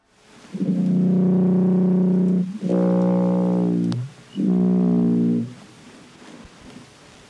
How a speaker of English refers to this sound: Time to go supersize. The loudest animal sounds of all. The following sounds we recorded from a blue whale off the coast of Chile.